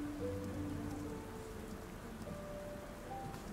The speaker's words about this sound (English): As the rain pours down, you can see drizzle on the windows of the train, and also your reflection.